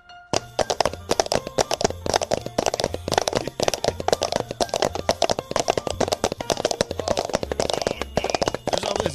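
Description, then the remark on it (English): Dense, rapid clip-clop knocks from red Solo plastic cups imitating horse hooves, many overlapping at once with no steady rhythm, loud for the whole stretch. “horse sounds like he has 12 hooves.”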